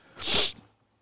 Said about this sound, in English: And excuse my sniffling. My allergies are acting up, unfortunately.